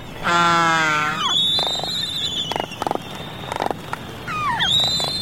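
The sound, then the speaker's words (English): Albatrosses calling in a packed colony at their nesting site during nesting season: a loud, buzzy braying call opens, then thin high whistles, short bursts of rapid clattering clicks, and a few more rising squeals over a steady background hiss. “The nesting sites are packed with birds, and albatrosses use their complex vocalizations to mingle with their fellow resonants.”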